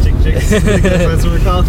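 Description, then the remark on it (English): Steady low road rumble from inside a moving car on its way to the Boston Museum of Science fills the background while a person talks over it, the engine and tire drone constant and fairly loud throughout. “We're just on the road.”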